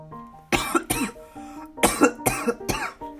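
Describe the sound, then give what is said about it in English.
A series of five sharp, harsh coughs in two quick bursts, loud, with a faint tonal hum between them. “Oh, that one, I coughed at the odd number.”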